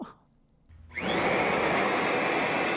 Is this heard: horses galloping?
no